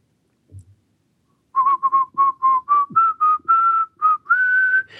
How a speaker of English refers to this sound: So you let out a little whistle, you do a little …, you speed things up a little bit, and then you give a little kegel at the end for Uncle Sam.